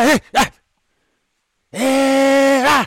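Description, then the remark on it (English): A person imitates the bark of a dog named Tyson, giving two quick barks, then after a short pause a long, steady, loud howl-like cry lasting about a second. “I mean, you want to now hear do Tyson's bark.”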